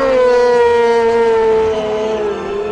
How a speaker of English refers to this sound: There's that goddamn wolf again.